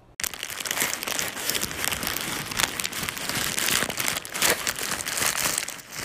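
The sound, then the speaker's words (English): Paper is crinkled continuously as a sound effect, making a dense, harsh crackle that mimics a violent crackling fire, steady and loud for several seconds with no voices. “This time we just crinkled it continuously and it created the effect of a very violent crackling fire.”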